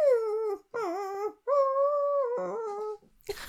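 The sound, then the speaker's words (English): A voice imitates a puppy, letting out a run of high, wavering whimpers and drawn-out howls in four loud bursts, ending with a short scuffling noise. “I speak, puppy.”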